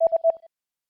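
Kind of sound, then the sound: signal or alarm, telephone keypad dialing tones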